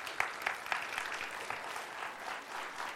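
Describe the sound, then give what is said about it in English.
Sustained applause from an audience for a panel making its way up to the front, a dense wash of many hands clapping steadily at moderate loudness for the whole stretch, with a few sharper claps standing out near the start. “And if they want to work their way up, you guys give them a round of applause as they start working their way up here.”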